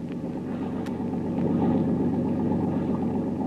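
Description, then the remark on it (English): A motorboat engine drones steadily throughout, a continuous low rumbling hum that holds at a fairly loud, even level with no voices. “Another motorboat maybe follow us. I hear it.”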